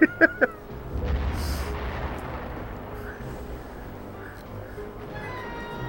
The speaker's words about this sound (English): Whoa, that far-off blast that so didn't like, cause any